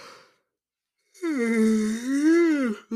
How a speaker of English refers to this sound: Man, yawn.